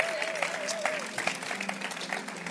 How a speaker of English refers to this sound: Clap your hands for Arise Choir.